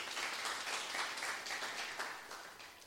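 A crowd applauds steadily, many hands clapping in a dense, even wash of sound that holds for a few seconds before easing slightly at the end.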